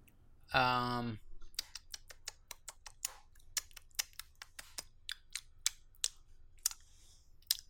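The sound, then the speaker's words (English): A brief voiced sound opens, followed by a steady run of sharp keyboard clicks tapping irregularly for several seconds, each one crisp and distinct. “Was that your mouse or your keyboard? My... It sounded like a keyboard.”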